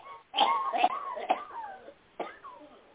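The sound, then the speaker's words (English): A series of about four short, raspy coughs from someone with a cold in the background during a call-in show, each a sharp burst trailing into a hoarse voiced tail, spaced irregularly over a few seconds with brief pauses between them. “Got a little cough in the background.”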